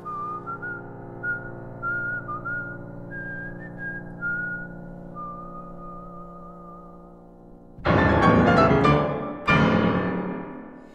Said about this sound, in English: to make it sound more nostalgic, you know, to have it whistled rather than played, although you have the option of playing it, actually playing it on the keyboard, if you can't whistle.